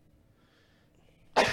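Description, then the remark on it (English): After a moment of near silence, a single loud sneeze bursts out, sharp and explosive, with no talking. “Bless you. God bless you.”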